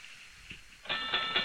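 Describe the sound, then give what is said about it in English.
A boxing match bell rings out suddenly for a fight billed as Ronnie James Dio versus Gene Simmons, struck several times in quick succession, bright and metallic with a lingering ring, after a quiet moment with only faint background noise. “Oh, there goes the bell. The bell rang.”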